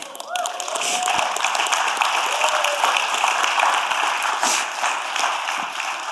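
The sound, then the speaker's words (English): A crowd claps and cheers steadily for about six seconds to congratulate a couple on the birth of their daughter, a dense, loud wash of applause with voices shouting and whooping throughout, and a brief whistle-like cry near the start. “Alexa's watching right now, so she heard you shouting and clapping.”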